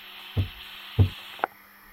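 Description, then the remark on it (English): A chair creaks and shifts in three short, low woody knocks spaced roughly half a second apart, over a steady high electrical hum that cuts out with the last knock. No one speaks. “I like the chair sound.”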